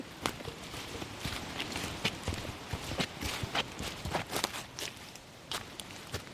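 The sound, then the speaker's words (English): Footsteps crunch and rustle through dense bush undergrowth at a steady walking pace, climbing a lot, with irregular brushy crackles between the steps; no one speaks. “So we've walked in for a little while now into the bush, climbing a lot, I have to say, but the rain's holding off.”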